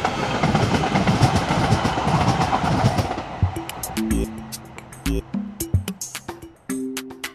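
A light rail train rumbles along the tracks with a broad rolling roar that gives way to rhythmic clunks and squealing, tonal wheel sounds as it moves past.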